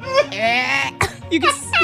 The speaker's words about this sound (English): I'm not throwing up. That sound I'm making is referred to as. How many more times do I have to? Coughing.